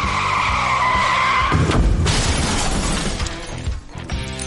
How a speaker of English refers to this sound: Yeah, I don't know where my little screeching tires went, man. Y'all just messed me all up.